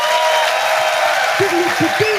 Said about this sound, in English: Ladies and gentlemen, will you please give a fantastic round of applause to the amazing Tim Key.